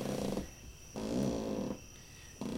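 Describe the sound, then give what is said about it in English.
A cot creaks with low, raspy croaking, fart-like noises in three rattling bursts separated by short pauses, fairly quiet, with no talking. “Your cot has like frogs under it or something.”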